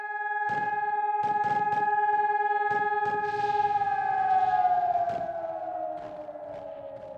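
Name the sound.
air raid siren wailing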